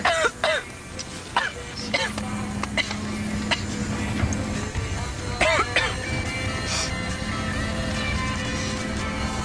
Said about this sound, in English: And you know, when you cough really hard like that, you get super high because that opens your lungs up.